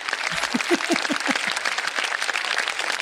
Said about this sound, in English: Fair play, Russell and Hobbs. It's a small round of applause for jam.